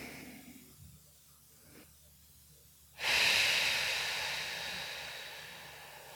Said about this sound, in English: And I'm breathing.